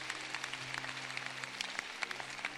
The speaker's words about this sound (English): No, those of you who don't have it, you are the ones who are not clapping because you don't know what is in the book. You, even if you don't know, just clap.